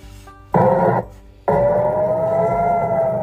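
A rocket warning siren wails loudly in the southern Israeli city of Ashkelon, a steady rising tone that cuts out briefly after its first burst, then returns and holds, with no one speaking.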